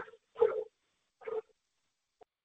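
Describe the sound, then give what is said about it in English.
A dog barks twice during a business conference call, short muffled barks about a second apart, fairly faint, with a tiny click afterward and no one talking. “I think the dog had a question as well.”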